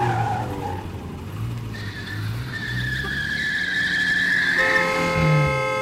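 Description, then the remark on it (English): A car engine revs and its tires screech in a long, rising skid, loud and sustained, ending with a sharp squeal as it swerves and stops, cutting off another driver to take a parking spot in a car park. “You peen ass, you cut me off and stole my spot.”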